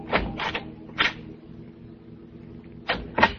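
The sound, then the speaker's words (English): The front door of a house opens at night with a few sharp clunks and rattles, a pause, then two more knocks as people let themselves in, over a low steady hum. No one speaks. “Driving up to his house in the dark. Letting ourselves in.”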